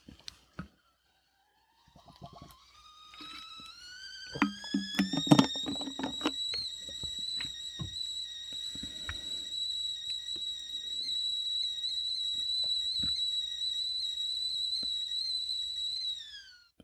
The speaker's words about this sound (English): So take care, and soon I will start with tea kettle and then the jingle. So here's the tea kettle.